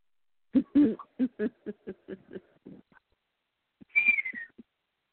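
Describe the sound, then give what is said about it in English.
A pet bird named Salty calls: a quick series of short, hooting chirps, followed after a pause by a brief falling whistle and a couple of soft clicks, with no talking. “Yes, that's you. You're the Salty Bird.”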